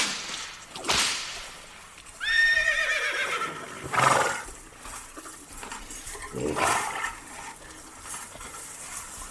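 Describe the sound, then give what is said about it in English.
A horse lets out one shrill, wavering whinny lasting about a second, set among a few sharp cracks that sound like a whip. Nobody speaks. “I think we can talk over the horse eating into head.”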